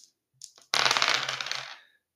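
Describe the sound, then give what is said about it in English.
A couple of light clicks, then a loud clattering rattle of dice rolled to pick next week's topic, tumbling across a hard surface, quick tapping bounces that fade out after about a second. “Ah, the Astrogallomancer gazes into the dice, and in their results, he divines next week's topic.”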